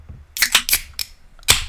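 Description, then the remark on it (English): Beverage cans or bottles being cracked open: a quick cluster of sharp, hissing pops followed by two more separate bursts, bright and fairly loud, with no talking. “Should we open our beverages? We shall.”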